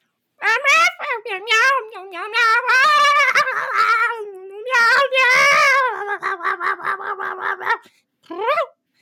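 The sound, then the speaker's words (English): A voice makes a long run of drawn-out, wavering meow-like wails, loud, ending with a short final yowl after a brief pause. It sounds like a person imitating a cat. “Yes, that sounds like a cat.”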